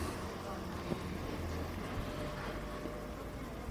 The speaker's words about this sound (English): Just letting this van pass.